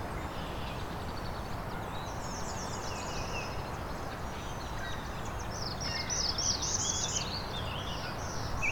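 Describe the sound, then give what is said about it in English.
A black-throated blue warbler sings a short series of buzzy, rising phrases, clearest near the end, over steady low outdoor rumble, with other faint bird notes in the background. “There we go, black throated blue.”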